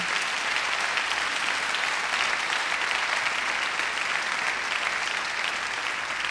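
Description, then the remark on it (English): A crowd applauds steadily for the speaker's stepmom on Mother's Day, many hands clapping in a dense, continuous wash of sound that holds at an even level throughout, with no voices standing out. “Let's give a hand clap to my stepmom”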